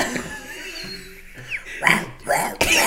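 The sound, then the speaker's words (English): A tiny 9-week-old puppy named Tank makes raspy, wheezy little vocalizations, hoarse grunts and breathy yelps that sound oddly like a gravelly smoker's voice, several short bursts. “It's like the dog off of Grown Ups.”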